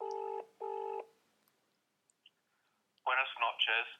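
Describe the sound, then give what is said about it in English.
A telephone call to a man at home ill rings out with one steady double-burst ringback tone, clear, followed by a short silence before a person starts talking. “So we'll try ringing him.”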